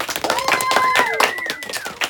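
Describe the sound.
An audience at the Spring Thaw Extravaganza applauds steadily as the host is welcomed to open the event, a dense, even wash of many hands clapping for a couple of seconds, with some voices and whistle-like tones rising over the clapping.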